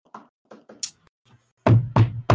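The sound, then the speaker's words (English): A few soft, scattered taps give way to three loud, heavy knocks on a door in a steady rhythm, booming, with no voices. “You're going to knock on the door?”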